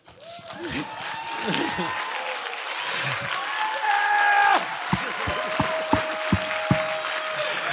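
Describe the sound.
Sustained audience applause, a dense wash of clapping that swells and holds steady for several seconds, with scattered cheers and voices mixed in and a few sharper individual claps near the end.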